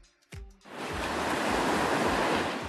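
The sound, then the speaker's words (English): Ocean surf rushes in on a beach as a loud, steady roar of breaking waves after a brief thump at the start, with rolling low swells pulsing underneath the wash. “If you give it a picture of a beach, it can find the sound of waves.”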